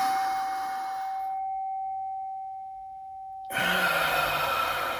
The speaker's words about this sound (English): Okay, so let's do four of these on the chime. Actually got the sound bowl today, so a little different.